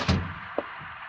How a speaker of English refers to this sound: Close the door.